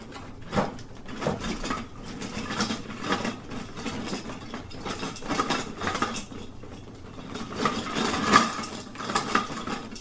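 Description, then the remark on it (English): Christmas ornaments clink and rattle together in a steady jumble of bright, glassy taps, some louder knocks standing out, continuing for the whole stretch with no voices. “I also have a bunch of ornaments still lying around because, well, Christmas cleanup is not quite done yet here.”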